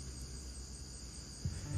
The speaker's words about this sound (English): I'm listening to the crickets. I hope you can hear them.